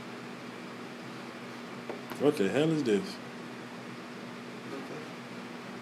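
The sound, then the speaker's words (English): A steady, even hiss of white noise runs through the whole recording with a low hum beneath it, while a man briefly speaks over it partway through. “That's some different... white noise.”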